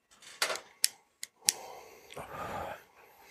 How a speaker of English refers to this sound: Burn my finger. Lighter with a full thing. There we go. Full thing of butane. It won't click on. I have the worst trouble with lighters.